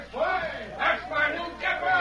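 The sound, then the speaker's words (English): The people of Wayne cheering for a man the sheriff told them about, with many overlapping voices shouting and calling out in rising waves that swell about three times over two seconds, with no clear words. “Oh, they're cheering for you, Dave.”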